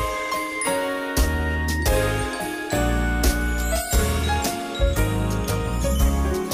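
A festive Christmas song intro plays: jingling sleigh bells shake brightly over a bouncy, steady instrumental beat with warm bass and chimes, loud, with no voices.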